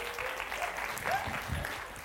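A crowd claps together in a sustained, even round of applause, a dense patter of many hands at steady loudness, with a few faint whoops or voices rising briefly through it.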